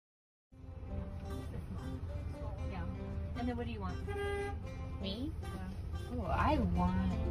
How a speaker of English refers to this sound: Why are they honking at us? They're mad at us.